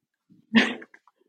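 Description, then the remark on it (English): A single sharp bark from Mia, a dog reacting to a delivery at the front door, fairly loud, preceded by a soft low grumble and trailing off into a few faint yips. No talking. “Dogs, man. Dogs are so great and also dumb.”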